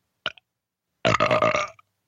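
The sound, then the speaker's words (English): A loud, drawn-out burp rumbles for about three-quarters of a second, preceded by a short sharp click or gulp, with no talking. “That was a real burp.”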